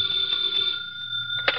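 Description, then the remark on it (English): A telephone bell rings in Nero Wolfe's office with a steady, high, metallic trill that carries through the whole moment, ending in a brief sharper clang. No one speaks. “It's for you, Inspector.”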